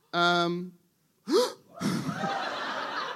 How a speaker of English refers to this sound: Someone gasped as if punched in the tummy.